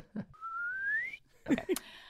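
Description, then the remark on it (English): A person whistles a single smooth upward glide, mimicking a slide whistle, held for about a second. A couple of short vocal bursts, like chuckles, follow right after. “That was a good slide whistle.”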